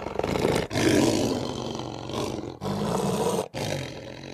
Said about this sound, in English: That was a lion. Oh. I don't think we should be running, though, because lions can definitely run faster than us. Did you know the roar of a lion can be heard 5 miles away?